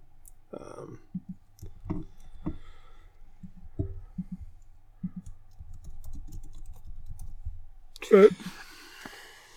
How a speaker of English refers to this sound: Sorry to just have me typing in stuff on the podcast.